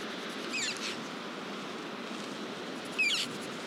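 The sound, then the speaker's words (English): Two short, high, squeaky calls of Cornish choughs at Kynance Cove, each a quick rising-and-falling cry, one early and one near the end, heard over a steady hiss of wind or surf, with no talking. “It's the cry of the chuff, Cornish chuff.”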